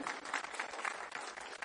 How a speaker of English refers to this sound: Give this guy a big hand clap. He's a visitor with us today.